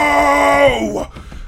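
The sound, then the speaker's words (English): A character in a tabletop role-playing game lets out a huge, furious scream. It is loud and raw, held for about a second before its pitch sags downward and it breaks off into quiet. “He lets out a huge scream.”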